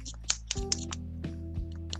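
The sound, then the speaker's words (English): An acrylic paint pen is shaken, its mixing ball rattling in a quick series of sharp clicks over a low hum, with no talking. “Like, they're acrylic paint pens, right? So, this, shake.”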